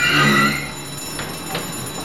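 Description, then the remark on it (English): A train's emergency alarm bell, pulled by someone aboard a train stopped in the pitch dark, rings loudly for about half a second, then its ringing fades away, leaving a few faint clatters and knocks in the background. “What are you doing, pulling alarm?”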